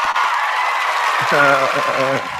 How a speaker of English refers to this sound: So I want to, without further ado, let's give a round of applause, man, for the legend, the myth, everything.